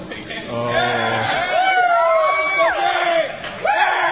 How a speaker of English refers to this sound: If you like his the most, and remember, only vote once by applause,